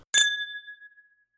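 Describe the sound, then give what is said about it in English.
A single bright clink of champagne glasses touching in a toast, with a clear ringing tone that lingers and slowly fades for about a second. No voices. “Cheers to you.”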